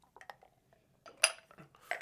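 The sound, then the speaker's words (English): A shot glass of Soggy Bombs clinks against teeth while a shot is drunk: a few small, sharp glassy taps, with the brightest, loudest click in the middle and another clatter of glassy knocks at the end, no talking. “You for sure heard that one hit my teeth.”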